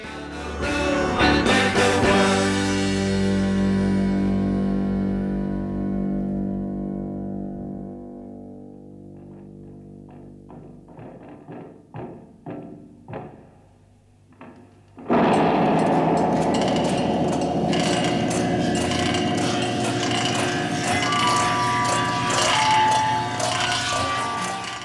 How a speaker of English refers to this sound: Regardless, we'll hear the stereo first and then again in mono, and also notice how the explosion afterwards has additional stereo echo added in said mix.